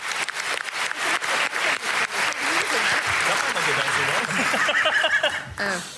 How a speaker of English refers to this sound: Can we have a moment's applause for